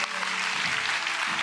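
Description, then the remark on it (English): A crowd claps steadily for people who have come up to the front, a dense, even wash of many hands with no break, fairly loud throughout, with faint voices mixed in underneath. “Come on, let's clap. Let's clap these people.”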